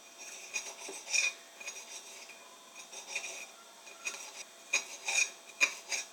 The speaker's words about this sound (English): So right now I'm chopping up my tarragon into small pieces so I can put it into the panko.